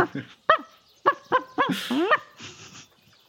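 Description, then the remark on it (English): A person imitates a dog barking, letting out a rapid string of six or seven short, yappy woofs and yelps, fairly loud, with no other talking. “Torvin would respond, but you are a dog, and so all he has heard is.”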